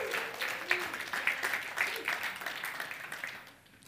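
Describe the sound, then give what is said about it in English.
An audience breaks into steady, scattered applause that carries on at a moderate level, with a few faint voices mixed in, before quickly tapering off at the end. “You can give them a clap.”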